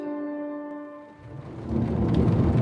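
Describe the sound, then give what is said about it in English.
A steady tonal hum gives way to a loud, roaring hurricane, Hurricane Ian making landfall in Florida as darkness falls: heavy rain and wind with deep, rumbling thunder filling the second half. No one speaks. “A treacherous night ahead for Florida as darkness begins to fall. A very dangerous and life-threatening storm.”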